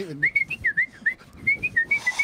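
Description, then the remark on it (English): Someone whistles a quick, bouncy original tune, about a dozen clear notes that rise and fall in pitch, with no talking over it. “It was a lot of just whistling in a row.”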